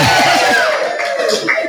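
A live audience at a cafe shouts a loud, drawn-out hello to Abby in unison, many voices blending into a sustained roar that holds steady for almost two seconds before tapering off.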